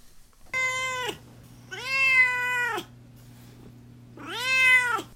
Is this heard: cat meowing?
yes